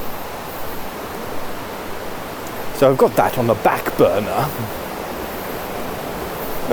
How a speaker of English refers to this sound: The river's very rough today. Very rough. There you go. There's some poo in it. So literally can play poo sticks with it.